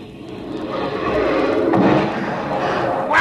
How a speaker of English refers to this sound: Like sitting on the grass and watching the fireworks.